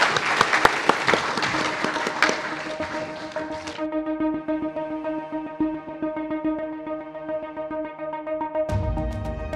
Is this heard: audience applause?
yes